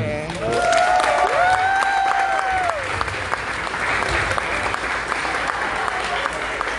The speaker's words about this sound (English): Is that everybody? Everybody, please give a big round of applause.